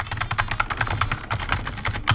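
Rapid, steady typing of an email on a computer keyboard, with dense overlapping key clicks and a few slightly louder strokes, no voices.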